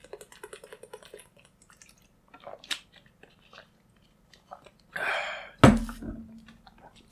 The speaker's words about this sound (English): I'm drinking water.